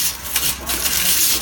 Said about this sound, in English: I'm going to scoop them all into a corner here. And I use parchment paper, so we're just going to scoop them all into a corner off this little baking sheet.